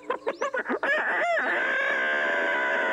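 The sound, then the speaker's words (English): A man's voice on a phone call imitates a hen laying an egg: a quick run of choppy clucks building into a long, loud, sustained squawking cry that holds steady to the end. “I don't want to hear you lay any more eggs.”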